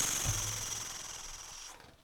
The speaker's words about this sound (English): Are you ready? Yes. Page, turn, noise.